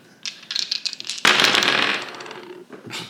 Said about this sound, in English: Alright, roll the dice.